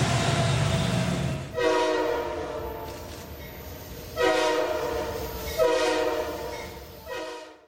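A train horn sounds in four loud, sustained blasts, the last one shorter, after a few seconds of low rolling rumble from a moving train.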